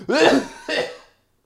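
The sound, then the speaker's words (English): Two quick coughs in a row after swallowing air, the first longer and stronger, the second shorter, with a rough throat-clearing quality and no talking around them. “I swallowed some air.”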